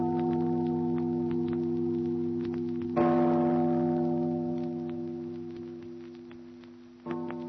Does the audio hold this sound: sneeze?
no